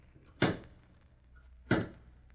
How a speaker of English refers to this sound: Thought I heard someone knocking on the front door. Someone knocking? Well, there is someone there.